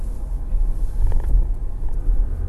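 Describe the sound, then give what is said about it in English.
Steady low road rumble from inside a moving car driving home on a Thursday afternoon, slowing in a line of traffic coming up to a traffic light; a constant deep drone with faint creaks and mechanical rattles on top, and no one speaking. “Once I say that, it's like, now I'm slowing down. I'm in a line of traffic coming up to the light.”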